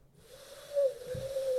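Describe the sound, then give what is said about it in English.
A single long, steady owl-like hoot, voiced by a person imitating the call as a 'woo' likened to Ric Flair. It holds one even pitch and swells slightly louder toward the end, with no other talking. “And now, do you hear that owl?”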